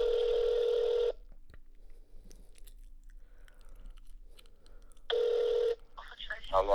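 A phone call connecting as another person is dialed to be added to an ongoing call, with two steady electronic ringback tones separated by a few seconds of near-silence, faint background clicks and rustling between them, then some noise at the end.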